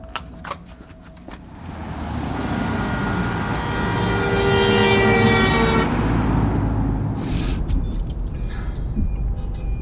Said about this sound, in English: This traffic. Where are they all going? Oh, I wouldn't... You can't U-turn there. What's going on? Have you all got lost at the same time, or what?